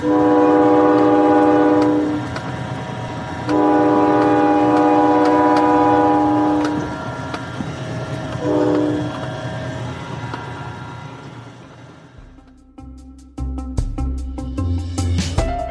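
A train rumbles past, its horn sounding two long, loud blasts and a brief third toot over the clatter of the wheels, before music comes in near the end.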